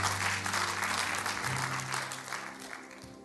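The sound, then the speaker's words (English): An audience claps in a dense, steady burst of applause that stays loud for a few seconds, then thins and softens, with a low sustained tone humming underneath. “That's the time for you to clap your hands.”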